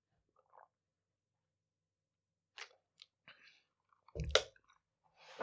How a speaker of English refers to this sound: I guess I'll sip some water.